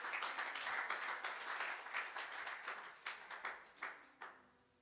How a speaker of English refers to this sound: Give the Lord a praise of applause.